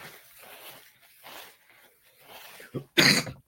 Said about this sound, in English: Come on now. Stop coughing.